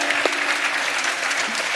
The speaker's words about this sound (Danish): Ja, lad os klappe.